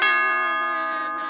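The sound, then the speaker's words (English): A doorbell rings once, a bright, loud chime that strikes sharply and then hangs, slowly fading over about a second with no voices around it. “Listen, girl, there's someone at the door.”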